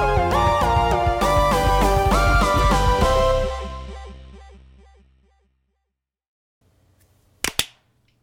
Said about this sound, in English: My clap came out real, like, wet and high-pitched. Then I'm not a fan. Did not go the way I wanted. I was hoping for a big, hearty thwunk. Mm. No thwunks for me.